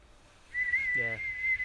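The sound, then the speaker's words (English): A person whistles one long, steady high-pitched note, imitating a stovetop kettle coming to the boil. It holds for over a second, with a brief low vocal sound underneath partway through. “People have the oven kettles. Yeah, the ones that whistle at you.”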